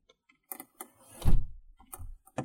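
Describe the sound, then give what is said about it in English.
A door swings shut with a solid low thud, preceded by a few light handle clicks and followed by soft latch rattles, otherwise quiet. “close the door.”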